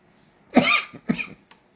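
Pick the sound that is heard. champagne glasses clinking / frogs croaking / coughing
coughing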